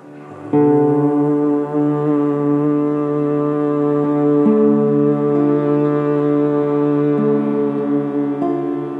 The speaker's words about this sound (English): and now we'll add in the chanting of the mantra Om. Begin just by humming the note.